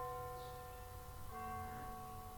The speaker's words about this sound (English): So, hear the bells?